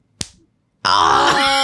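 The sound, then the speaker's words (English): A single sharp snap of a bra strap pulled hard and released against skin, quick, followed after a short pause by a loud, drawn-out pained groan from a voice. “Yeah, and then there's one where the guys would pull your bra strap real hard. And then it would just go, like...”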